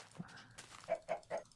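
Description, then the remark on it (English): A dog barks three quick times in a steady rhythm, fairly faint, with a small yip just before the barks and no talking. “Woof.”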